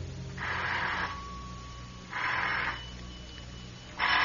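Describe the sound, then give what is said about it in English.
A telephone rings in repeated bursts, each ring lasting under a second with short pauses between, clear over a low steady background hum. “Somewhere out of a foggy dream, a telephone is ringing.”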